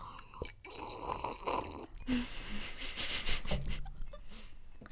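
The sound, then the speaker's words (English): Wet chewing and mouth noises, with irregular smacking and crunching bursts and some heavy breathing through the nose, going on steadily for a few seconds without any talking. “I want to eat this, but I feel like one of us has to talk, you know?”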